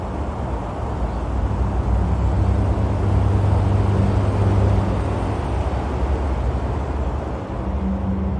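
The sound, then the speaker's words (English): A steady wash of road traffic noise heard from a concrete backyard beside the fences, recorded on a phone, a continuous low rumble with a faint engine drone rising and falling, no distinct horns or voices. “I'm sitting in my backyard now beside the fences, listening to that traffic”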